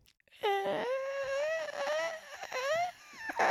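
A rusty door creaks open in a long, wavering, high-pitched groan that slides up and down like a moan, then breaks off and starts again briefly. No one speaks.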